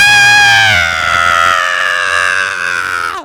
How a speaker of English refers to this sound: In the car, duh, re-roll it. Just screaming like a little girl in 0.5 seconds.